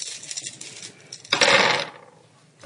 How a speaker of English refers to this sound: Right, roll your dice.